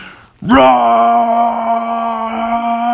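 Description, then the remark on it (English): A human voice imitates a roar: after a short quiet moment, one long, loud, sustained, throaty cry that holds a steady pitch to the end. “Roar!”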